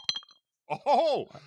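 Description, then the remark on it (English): A few bright glassy clinks as a big ice cube drops into a little drinking cup, ringing briefly, then a short drawn-out vocal sound from someone. “So here comes a little teeny drinking cup. Here, I'll even do it in front of the mic. Here comes the big ice cube.”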